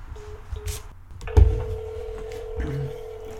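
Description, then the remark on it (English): Short electronic telephone tones beep in a quick series as a call is dialed, followed by a steady line tone after a thump, clear with light background noise. “Is this one of those phone calls?”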